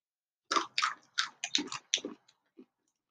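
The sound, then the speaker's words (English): Crunchy, hot, spicy red chili snacks being chewed, with about seven sharp, bright crunches in an uneven rhythm, fading to a couple of soft bites at the end. No one speaks. “I'm just going to try like two of these.”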